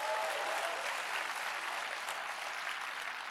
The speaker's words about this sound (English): Come on, give him a hand clap or something. You can do that.